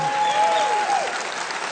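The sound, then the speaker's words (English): A sermon audience claps in a steady, dense patter, fairly loud and without voices, while a thin high tone hums faintly over the first half. “Either clap or don't, all right?”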